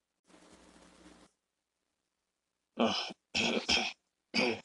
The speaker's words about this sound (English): Excuse me, I had to clear my throat for a second.